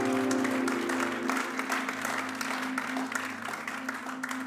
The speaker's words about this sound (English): If you believe that, give the Lord a good clap offering.